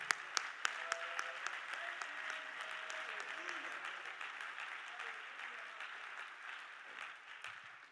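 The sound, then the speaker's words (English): An audience at an evening service claps hands in sustained, dense applause lasting several seconds, steady and loud throughout, with a few sharper claps standing out at the start and faint voices beneath. “Why don't you clap your hands like you really mean it tonight?”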